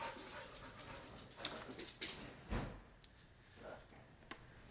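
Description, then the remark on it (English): A dog named Benny, just back from a walk, moves about, panting softly with a faint whimper, amid scattered clicks and knocks like claws on the floor and a door or drawer. “Oh, the boss lady's back with the doggy dog. They just went for a walk.”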